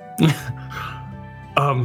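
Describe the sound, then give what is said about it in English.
A voice imitates a small, voiced cough or throat-clear, with two short throaty bursts separated by a low hum, moderately loud. “he won't be able to help but cough a little bit when Briggerd says his life back”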